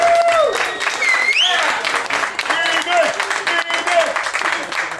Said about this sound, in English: So thank you to Phoenix Landing for having us. Please clap it up for Phoenix Landing one time.